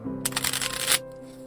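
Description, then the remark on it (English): A hired magician riffle-shuffles a deck of cards in one quick, crisp fluttering burst lasting under a second, over a faint steady low hum that continues after the shuffle stops. “William pulled a card from the deck.”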